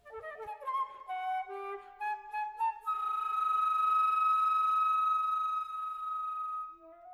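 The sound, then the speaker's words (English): A flute plays quick, chirping, birdlike phrases that step upward, then holds one long bright high note before a short rising figure, with a few low piano notes at the start and no voices. The piece is Messiaen's La Meule Noire (The Blackbird), for piano and flute. “you've been listening to La Meule Noire, the Blackbird, which is for piano and flute, as you can hear.”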